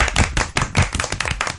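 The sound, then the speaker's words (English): Loud, dense clapping from a small group of students from Sha Tin Government Secondary School giving themselves a round of applause, a rapid crackle of overlapping hand claps with no voices over it, surging in brief waves across the short burst. “I think that's the loudest clap we've ever had.”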